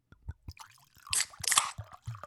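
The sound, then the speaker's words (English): Clatter of drinks being opened and poured: soft knocks, then two bursts of fizzy hiss from popped can tops, with wet sloshing and dripping in between. No talking. “Yeah, I'll pour and you guys pop the top.”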